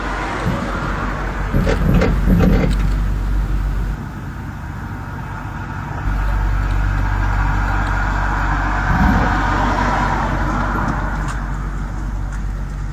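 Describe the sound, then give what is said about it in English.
A car rolls in gear with a low, steady rumble, dips briefly quieter, then the engine catches as the clutch is let out and settles into a louder, continuous idle drone; a bump start of a rolling car. “Car is rolling. Slowly bring out your clutch. Car is started up.”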